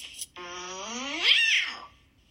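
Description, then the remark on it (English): A person imitates an angry cat meow: one drawn-out, strained yowl that climbs in pitch and then falls away, fairly loud with no other sounds around it. “Then the angry meow, but we only use this one on rare occasions because overall we're a very happy kitten family.”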